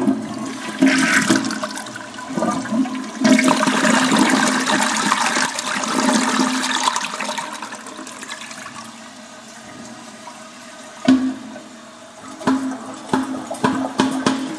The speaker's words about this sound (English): Oh, maybe I shouldn't do that. Whoopsies! Shouldn't do what? I was pushing the toilet lever unnecessarily. Just to be annoying. That might cause it to break.